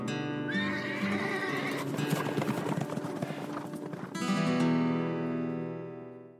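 A horse whinnies loudly, its wavering call breaking into a run of hoof clops before a second long, shuddering neigh rings out and fades.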